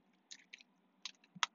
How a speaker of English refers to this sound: So moving on, Boston, and I'm going to take a sip of my water. So bad radio.